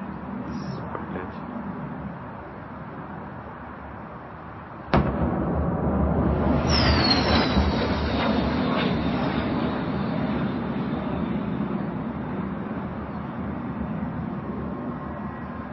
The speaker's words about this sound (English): We have some additional footage. This is some missile strikes in Kiev. A number of missile strikes here. We'll watch this.